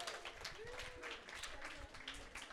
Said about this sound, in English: Give me a round of applause if you like scary stuff. Yeah!